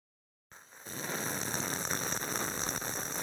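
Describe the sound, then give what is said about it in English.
A long slurping sip of hot drip coffee: an airy, hissing slurp that starts abruptly after a moment of silence, swells slightly, then holds steady with no talking. “I'm sorry, I have to do my sip first.”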